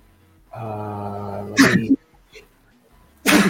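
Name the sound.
sneeze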